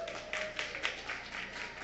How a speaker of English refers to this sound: You are doing so wonderful. You should clap for yourself.